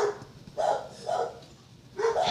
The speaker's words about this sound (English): What is the problem? Your dogs. The dogs are the problem.